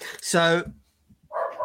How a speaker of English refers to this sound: Whose dog's barking?